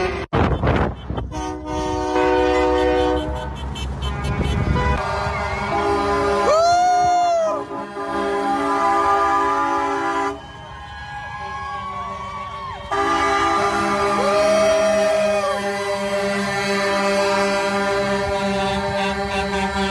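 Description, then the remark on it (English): A long convoy of many cars and trucks passes outside Edmonton, heading to Calgary on January 23, 2022, with air horns blaring almost nonstop, long overlapping tones, some swooping up and down in pitch, over a steady loud rumble of traffic. “This is by Action Center outside of Edmonton heading to Calgary, January 23rd, 2022, convoy. More than trucks, lots of cars and trucks.”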